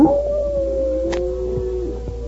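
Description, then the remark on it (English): A single long, wailing coyote howl, given by a man as a signal, holds a steady, slightly wavering pitch for a couple of seconds. It sounds loud, with no talking around it. “As they went down the path, the Indian suddenly gave as a signal the wailing howl of a coyote.”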